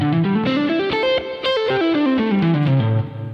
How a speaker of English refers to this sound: So you might prefer the sound of the legato with the hammer-ons and pull-offs. You might feel like it's smoother, that it just has more flow to it.